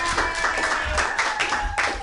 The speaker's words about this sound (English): Put your hands together, everybody, clap them in a wild-like fashion